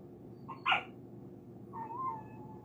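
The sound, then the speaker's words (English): A single sharp dog bark rings out against a low background hum, followed about a second later by a drawn-out, wavering whine. No one speaks. “I don't know if she's in labor or not. Maybe she's barking because she's hurting.”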